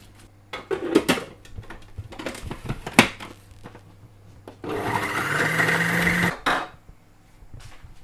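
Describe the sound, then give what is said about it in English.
A blender roars for about two seconds, grinding the undercrust of a bread roll into breadcrumbs with a dense whirring buzz, after several sharp knocks and clatters of kitchen handling. “you've popped the undercrust of the roll in the blender and we've now got some breadcrumbs of sorts.”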